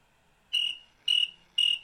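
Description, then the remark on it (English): Three evenly spaced cricket chirps from a sound effect, each a bright, steady high-pitched trill lasting about a quarter second, clear against near silence. “I have the perfect sound effect. Do you want to hear it?”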